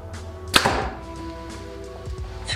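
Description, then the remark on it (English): A single sharp snap as a Hoyt Ventum 30 compound bow (70 pounds draw weight, 29-inch draw, 85% let-off) shoots a 350-grain arrow, followed by a brief string twang and hum that fades out, with a faint low thud afterward; no talking. “First arrow will be 350 grains.”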